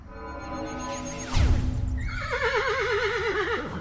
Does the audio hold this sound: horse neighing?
yes